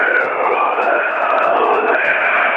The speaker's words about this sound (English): Sir, can you stop with the heavy breathing and hissing? It sounds like someone strangling a badger or something.